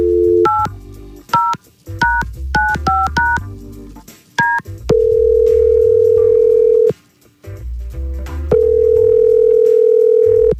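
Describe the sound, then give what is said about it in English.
A Y100 radio show places an outgoing phone call: a rapid string of telephone keypad tones is dialed, followed by two long, steady ringback tones with a pause between. The sound is clear, with no talking. “We need to get Mary on the phone, I guess, and hear her side”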